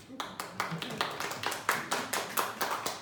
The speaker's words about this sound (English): Good job, clap.